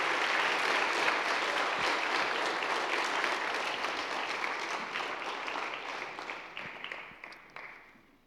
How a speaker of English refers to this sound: So while they come up, would you welcome our panelists, and we'll introduce them in just a moment. Will you welcome with a round of applause? Come on up.